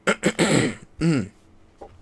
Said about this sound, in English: And apparently I'm, like, dying or something. No, not really, but just, like, my cough. Sorry about my cough during the episode.